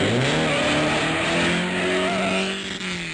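A car engine revs hard and accelerates, its loud roar climbing steadily in pitch for a few seconds with no voices.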